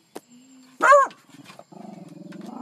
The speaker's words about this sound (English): Can't avoid it. She found an animal to bark at. Can't seem to avoid it.